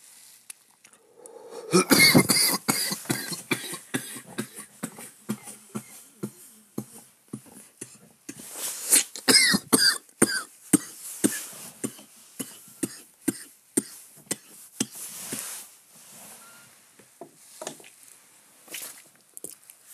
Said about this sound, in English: Excuse me. If I have a fit of coughing.